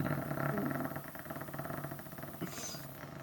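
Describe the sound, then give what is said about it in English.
A low, steady rumble from a person's throat imitating an idling car engine, with a rough pulsing texture that holds for a few seconds, with no talking over it. “Who's starting up a car? No, that's just my internal throat noises.”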